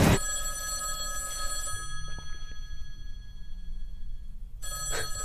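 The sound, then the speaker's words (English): An old-style telephone bell rings loudly with a sustained metallic clatter, stops, then begins ringing again near the end over a low background rumble. “First, that phone over there is going to ring.”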